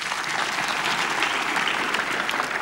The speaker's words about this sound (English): So clap for him again.